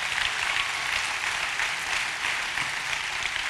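A church crowd applauds its parking team steadily, a dense wash of many hands clapping at once, sustained and fairly loud for the whole stretch without pause or voices.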